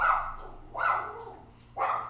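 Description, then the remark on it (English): A dog barks three times at a steady, roughly one-second interval, each bark short and sharp, moderately loud, with no one talking. “My dog don't like that one.”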